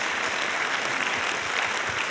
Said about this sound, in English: Yeah, you can clap. That's good. That's a good thing.